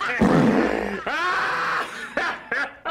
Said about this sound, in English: I would argue that the dinner table scene is the best flatulence scene in the history of cinema.